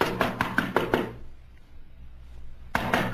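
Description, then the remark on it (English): A quick run of loud, firm knocks on the wooden door of Sanchez's house, about half a dozen raps, then a pause of quiet before another burst of rapid knocking begins. “Don't I know how to beat on the door? No one's answered, have they?”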